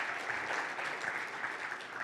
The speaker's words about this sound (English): A round of applause for all of our jumping jackers.